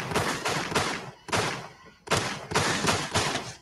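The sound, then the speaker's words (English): Gunshot sound effects fire in a rapid, loud series of sharp, noisy bursts, each cracking in suddenly and fading briefly before the next, with a short pause midway and no one talking. “I'm going to fire some shots for you, brother.”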